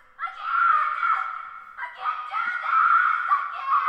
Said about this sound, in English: Okay. Why? Why are you screaming?